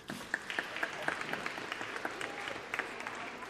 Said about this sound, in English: Let's give everyone a bit of a clap.